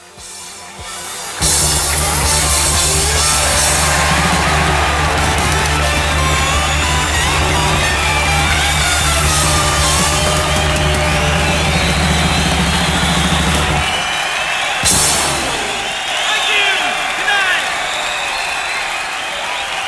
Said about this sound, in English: It's clearly raining heavily, and you've got a voice, the promoter or somebody, saying, maybe if we cheer loud enough, we can stop this rain, which is immediately overtaken by this deluge of a tsunami covering the crowd.